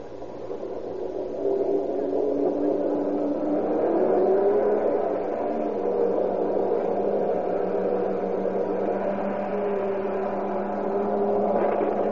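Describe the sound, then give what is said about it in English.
A heavy truck engine rumbles steadily, its pitch rising and settling as it slowly backs up so its load can be transferred, with no voices over the drone. “Back her up for us and we'll transfer the load.”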